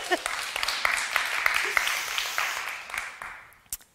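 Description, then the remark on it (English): A church audience applauds during a sermon with dense, steady clapping that holds for a few seconds, then thins and fades out, ending in a couple of scattered final claps. “Yeah, we can get applause for that.”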